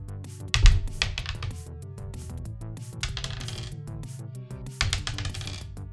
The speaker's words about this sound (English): And that's where I'm going to start rolling dice to see if I can get the components I want.